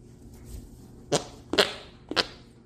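farts

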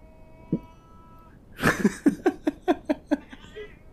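cat yowling

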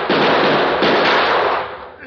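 gunshot

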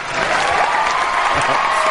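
applause sound effect

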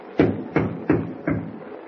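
knocking on a door

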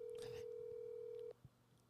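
phone call ringing tone

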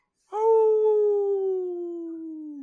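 wolf howl

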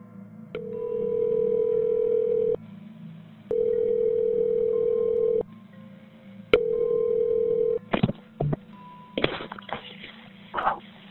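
telephone call ringing through

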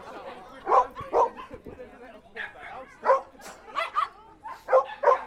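dog barking

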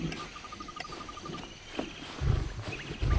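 lion roar

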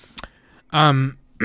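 throat clearing

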